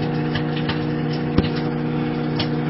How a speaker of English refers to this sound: how to poach an egg or two in the microwave, doing bacon this way is very good